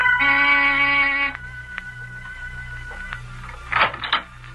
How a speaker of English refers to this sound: I rang the door buzzer.